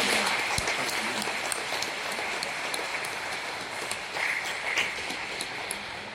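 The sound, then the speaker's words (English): A parish audience applauding Sunday school children, a dense steady patter of many hands clapping that holds an even level for about six seconds, with a few sharper claps standing out. “Now let us give a special applause for our congregations.”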